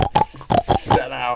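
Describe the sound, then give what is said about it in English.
A person mimics a pig, letting out a quick run of four or five nasal oinks and snorty grunts, loud and rhythmic, ending in a longer rough grunt. “Little pig boy wants to go and see the pig wrestling.”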